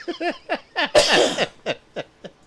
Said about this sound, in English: A damn cough.